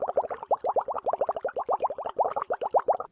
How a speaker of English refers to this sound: Do you guys hear those bubbles?